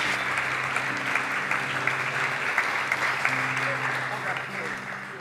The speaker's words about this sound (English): Give them a round of applause and say, "Well done."